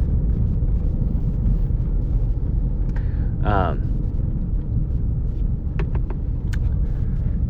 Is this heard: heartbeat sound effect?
no